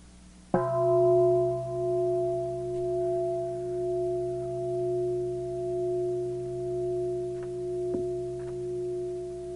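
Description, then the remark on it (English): A single meditation bell is struck once and rings on in a long, steady, sustained tone with several clear overtones, its loudness gently pulsing as it slowly fades. A faint tap sounds near the end. “Any thoughts we have about the bell?”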